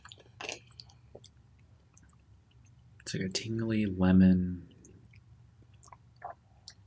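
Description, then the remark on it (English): Soft mouth sounds of someone chewing food, with small wet clicks and crunches before and after a brief burst of speech in the middle. “I'm still chewing.”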